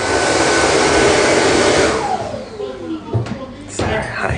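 A toilet flushing: a loud, steady rush of water for about two seconds, then a gurgling, falling drain as the bowl empties, followed by a few brief knocks and splashes.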